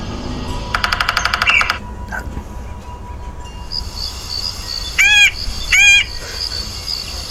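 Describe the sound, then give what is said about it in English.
Wild bird calls ring out: a rapid buzzy trill early on, then two loud, clear, whistled calls a second apart, all over a steady hiss of insects and low background rumble. “So how many different types of birds are in that thing?”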